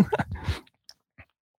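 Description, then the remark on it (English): A brief slurping sip lasting about half a second, followed by a couple of faint mouth clicks or swallows in otherwise near silence. “I'm just going to take a sip of my little koi here.”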